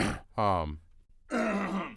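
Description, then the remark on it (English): A bout of coughing: a short harsh burst, a strained voiced groan, a brief pause, then a longer rough, throaty cough, all fairly loud with no talking. “Don't cough at me.”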